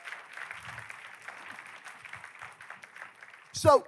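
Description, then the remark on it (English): An audience claps together in a steady, dense patter at moderate loudness, with a few faint voices underneath, ending in a sudden loud vocal whoop. “Oh, come on, let's give the Lord a big clap right there.”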